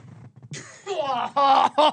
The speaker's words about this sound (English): As you can see, if you're watching on YouTube, sorry for the cough.